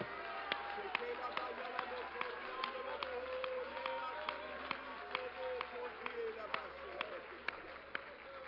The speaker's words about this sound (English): And everybody said, in Jesus' name, would you clap your hands to the Lord and let's give Him a shout of praise. Hallelujah.